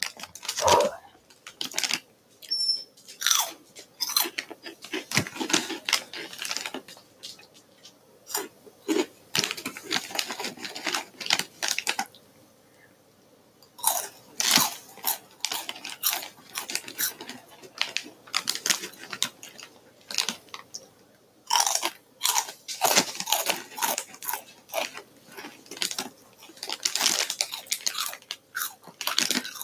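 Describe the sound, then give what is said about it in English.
Someone crunches on hot Cheetos, a long run of loud, crisp bites and chewing in irregular bursts, with a short pause partway through and no talking. “I really like hot Cheetos. They're good.”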